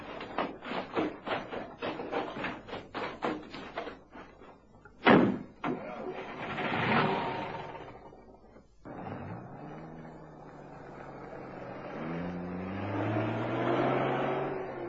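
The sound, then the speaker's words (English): A burst of quick thumps gives way to a single loud, sharp truck door slam, followed by the truck's engine starting and revving higher as it pulls away at speed down a village street. “Luckily, the key was in the ignition. Davy pulled out at speed, and they raced off down the village street”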